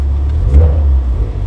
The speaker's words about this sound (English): The little brother's in the car. They're in the garage. Had to rev the Mach. That's all.